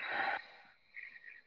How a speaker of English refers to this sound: We'll take that big breath in together, fill up those lungs, making it more bright, more vivid. Big exhale.